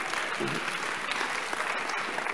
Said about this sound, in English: If you are not clapping, you are not a child of God.